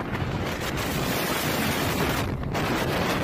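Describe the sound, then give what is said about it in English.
Strong wind gusting up to 70 miles an hour in Denver roars and buffets the microphone in a dense, continuous rush, heavy in the low end, with a brief lull before the gusting picks back up. No voices are heard. “So in parts of Denver, they had up to 70-mile-an-hour winds. Gusting.”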